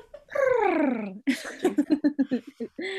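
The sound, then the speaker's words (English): A human voice mimics a cat: a long, falling meow-like cry, then a quick train of rhythmic, rolling pulses imitating a purr, fairly loud with no talking. “That's your website sound? A purr.”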